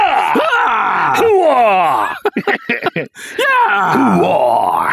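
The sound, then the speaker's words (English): A person in a recording studio with a compressor limiter lets out loud, strained screams and groaning wails, rising and falling in pitch, with a brief choppy break of gasping sounds in the middle before the screaming resumes. “We have a compressor limiter, so I can scream as loud as I can.”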